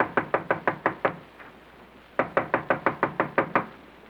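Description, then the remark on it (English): Rapid, firm knocking on the door of Connie's apartment comes in two bursts: about six quick raps, a pause of roughly a second, then a longer run of about nine. The knocks are loud, with no voices. “I'll knock on the door.”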